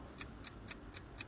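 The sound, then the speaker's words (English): A clock ticks in a quick, steady rhythm, about four crisp, sharp ticks per second, timing a round of rapid-fire questions, heard on its own at a moderate level with no voices. “And the clock is on.”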